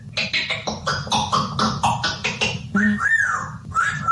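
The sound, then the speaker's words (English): Charlie the Cheeky Parrot, a South African red-tailed parrot, counts aloud, rattling off a quick string of short, squawky, speech-like syllables, then gives a swooping whistled note, fairly loud over a low background rumble. “A South African red-tailed parrot who can curse and swear and can navvy and can whistle and can sing.”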